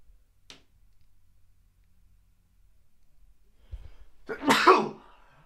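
A single loud, sharp sneeze bursts out near the end, preceded by a brief quick inhale, with near silence beforehand apart from a faint click early on.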